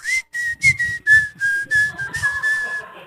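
A breathy whistle through the teeth, a steady high tone that drifts slightly lower in pitch across about three seconds, broken into short puffs with an airy hiss and no talking.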